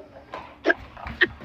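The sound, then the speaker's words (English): A dog about to go outside gives two short, sharp yips about half a second apart, fairly quiet, with faint snuffling noises in between. “His dog's about to go outside.”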